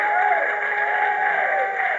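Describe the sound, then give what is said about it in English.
An audience claps and cheers in praise without pause, a dense and loud wash of applause with raised voices crying out above it throughout the two seconds. “Well, give him a hand clap of praise.”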